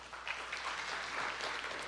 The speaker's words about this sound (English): Will you clap?